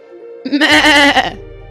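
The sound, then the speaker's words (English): A person imitates a goat's bleat, one loud, wavering nasal cry lasting under a second, with a low hum continuing beneath and after it. “Sheep bah. Goats meh.”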